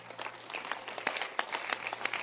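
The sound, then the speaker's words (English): An audience claps their hands in a steady burst of applause, many overlapping sharp claps forming a dense, moderately loud patter with no talking over it. “Let's clap our hands for this girl.”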